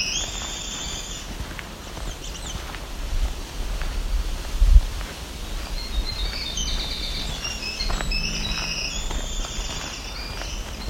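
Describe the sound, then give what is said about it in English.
A black-throated green warbler, the fourth one heard, sings thin, buzzy high phrases at the start and again in the second half, over a steady insect hum and low wind rumble, with no voices. “There's another black-throated green warbler making that song.”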